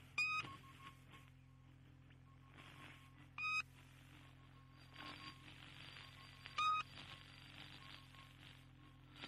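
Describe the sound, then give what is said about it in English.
The shortwave radio station known as the Pip sounds short beep pips, three of them at a slow, even interval of about three seconds, over a steady bed of hiss and low hum. “The Pip sounds exactly like the buzzer used to sound.”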